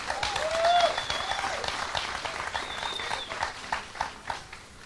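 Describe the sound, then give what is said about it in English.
An audience breaks into sustained applause as a hand clap of praise to the Lord, many hands clapping together in a dense, steady patter that swells early and then gradually tapers off, with a few whistles cutting through. “Folks, let's give them a hand clap of praise and the Lord, too.”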